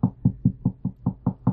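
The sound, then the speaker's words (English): Rapid, steady knocking on a wooden front door, about eight firm raps in quick succession with an even rhythm, fairly loud with no voices. “But the person at her front door didn't stop knocking.”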